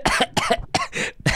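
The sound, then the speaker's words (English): A quick run of about five harsh coughs from someone who laughed too hard, fairly loud, each burst following right after the last with no talking in between. “Why are you coughing? Because, dude, I was laughing too hard. It made me cough.”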